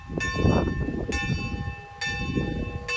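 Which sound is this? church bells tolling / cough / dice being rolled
church bells tolling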